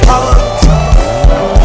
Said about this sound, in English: As you clap your hands, let's celebrate all the bishops, yes, all the pastors, all the reverends, all the leaders, all those who work. Clap your hands and let's celebrate ourselves.